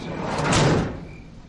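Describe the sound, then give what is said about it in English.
A van's sliding door rumbles along its track and shuts with a muffled thud. It is a single, fairly loud pass, and the rumble fades quickly afterward. “Elk slid the van door closed and sat next to Macy on the seat in front of me.”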